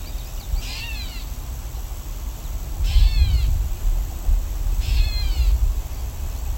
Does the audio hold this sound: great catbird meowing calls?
yes